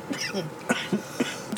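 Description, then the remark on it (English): Coughing and throat clearing, several short harsh bursts in an uneven rhythm over about two seconds, moderately loud, with raspy vocal noise between them. “Damn, what a start. Shout out our Cough Kink listeners.”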